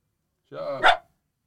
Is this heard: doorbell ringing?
no